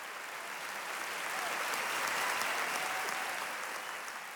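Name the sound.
concert audience applause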